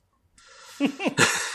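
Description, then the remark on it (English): A person performs an exaggerated gasp: a rush of breathy air, then a few short, strained voiced catches falling in pitch, ending in a loud, harsh breath. “When you yell gasp, I know gasp. You really gasp.”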